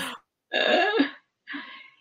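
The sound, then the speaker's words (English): A few harsh, throaty coughs from a person leading a prayer, with short pauses between them and no talking. “Maybe Reverend Cindy can take over while I cough.”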